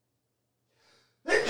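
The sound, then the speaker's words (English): A single loud sneeze: a soft, breathy intake followed by a sudden explosive burst of air, with no talking around it. “No, I was saying you don't get another bless you.”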